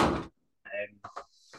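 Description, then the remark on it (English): A door being closed: a broad rushing scrape, a brief pause, then a squeaky slide and a couple of solid knocks as it shuts. “I'm just about to close the door here.”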